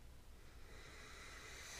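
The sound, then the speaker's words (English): A long, deep sniff drawn in through the nose, a steady breathy hiss lasting nearly two seconds and swelling slightly toward the end. No one speaks. “Full sniff.”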